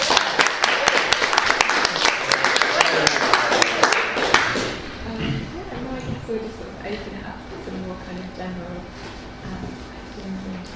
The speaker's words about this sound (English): First of all, a round of applause for all of us.